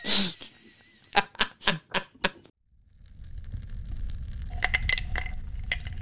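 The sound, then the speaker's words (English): Fine handcrafted resin dice from Joby Resins clink against a glass in five sharp knocks, followed by a steady low crackling wash with a few lighter clinks near the end, while someone sits by a fire; nobody speaks. “You've caught me here sitting by the fire and enjoying a glass of fine resin dice.”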